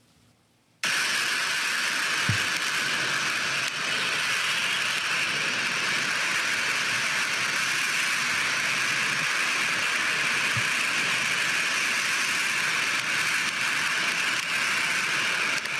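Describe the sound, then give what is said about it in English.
A steady, loud roar of storm wind recorded at a house during a storm that lasted about 6 hours, beginning abruptly and holding constant throughout, a dense rushing rumble much like a passing train, with a couple of faint low thumps. “I mean, it essentially sounds like a train's passing by for 6 hours.”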